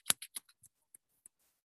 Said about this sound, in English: I'll show you what I'm doing. I'm literally just hitting that corner of that paper, and it sounds like I'm kicking something.